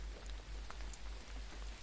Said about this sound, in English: As you stand watching out your window, you notice soft rain begins to fall from the clouds.